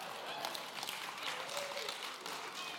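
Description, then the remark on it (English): Steady applause from the women in the audience while the men do not clap, a dense patter of many hands clapping at an even, moderate loudness for a few seconds with no voices standing out. “Ladies are clapping, men are just staring.”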